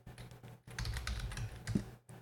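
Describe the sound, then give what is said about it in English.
Rapid typing of a search on a computer keyboard, a flurry of clicky keystrokes in an uneven rhythm with a brief pause, quiet and dry with no voices. “Jeez, I gotta learn how to type.”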